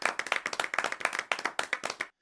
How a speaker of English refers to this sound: I can put a clap in here, I reckon.